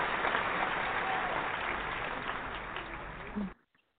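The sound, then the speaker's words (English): A crowd claps steadily to welcome a speaker, a dense, sustained wash of applause that gradually thins and then cuts off abruptly, leaving near silence. “So without further ado, we want to welcome and give a great hand of applause.”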